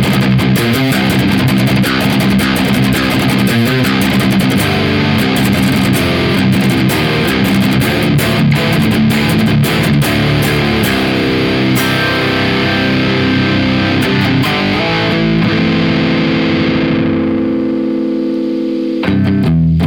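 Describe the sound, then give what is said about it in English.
A heavily distorted electric guitar plays loud, rhythmic palm-muted chugs with bursts of chords, thick low-end crunch throughout, then a sustained chord rings out and fades at the end. No talking. The amp's volume and gain are turned all the way up, with the frequency sweep set at 1 o'clock. “All I did was move the volume and the gain are dimed, and the frequency sweep is at 1 o'clock, and it just sounds right to me, but still gets all the chugs.”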